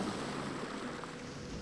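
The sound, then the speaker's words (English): A steady, continuous hiss of warm ocean waves flowing rhythmically over wet sand, soft and even throughout, with no voices. “Listen to the rhythm waves flow over the sand.”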